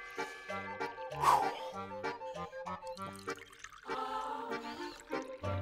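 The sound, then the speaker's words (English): Water pours and glugs in uneven bursts, followed by a stretch of gulping as someone drinks, with no talking. “It's time for a water break.”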